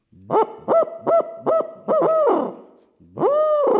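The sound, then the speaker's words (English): An owl hoot blown on a hoot stick: a loud run of five quick, evenly spaced hoots, then a longer drawn-out note that fades, followed after a pause by another long hoot. “I've actually got this hoot stick behind us here. Here we go.”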